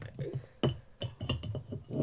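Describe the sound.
Scissors rattle and clink against a glass jar as they are pulled out, giving a few sharp, bright taps in irregular rhythm, with people talking underneath.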